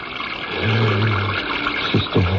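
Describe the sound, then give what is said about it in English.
Water pours in a steady, splashy stream for a couple of seconds, with a hollow gurgling tone rising as a vessel fills, then a few short glugs at the end. “Water. Yes, that's why. I'll get water.”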